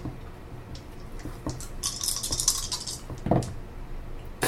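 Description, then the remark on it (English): Three dice are rolled against agility in a tabletop game, clattering and rattling across a hard tabletop: a few scattered clicks, then a busier tumbling rattle and a final sharper knock, moderately loud, with no voices. “Okay, give me a 3 agility, so roll 3 dice against your agility.”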